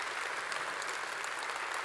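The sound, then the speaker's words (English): An audience claps steadily, a dense, even wash of many hands throughout, with no one speaking over it. “We're not clapping for those students.”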